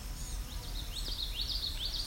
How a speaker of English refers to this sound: So we're entering the Vine Mount Swamp. We've got sounds like blue-gray gnatcatchers. Yep.